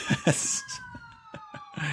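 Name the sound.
ambulance siren passing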